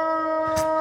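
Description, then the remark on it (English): A dog howls in one long, steady, high note with a rich ringing tone. A brief muffled bump cuts in partway through, and no one speaks. “That was a dog.”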